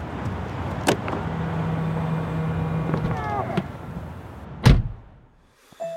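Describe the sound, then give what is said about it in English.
Someone getting into a car: a few sharp clicks and clunks, a brief mechanical whir, then a heavy door thud that leaves a quieter, muffled interior hush. “You could head to the cinema, but instead, you retreat into your car.”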